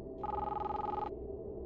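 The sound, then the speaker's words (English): A cell phone rings in a single rapid electronic trill lasting about a second, clear, over a low murmur of background noise, as its owner heads home through town. “I went to head back towards the center of town, back to the other houses on the opposite side of the street, leading home when my cell phone rang.”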